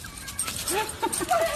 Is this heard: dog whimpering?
yes